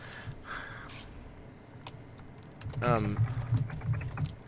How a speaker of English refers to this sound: is just furiously just typing. I'm sending them a polite message about how I have a Switch now. Can I please have ukulele on the Switch?